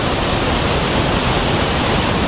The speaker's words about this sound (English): That's a pretty big waterfall. Not too bad.